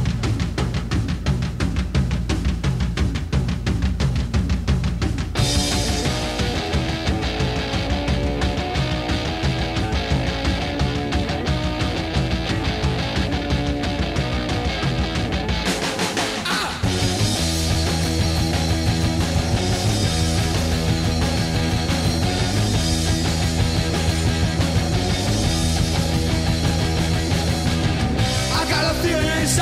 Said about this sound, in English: This sounds like punk rock to me and still does to this day.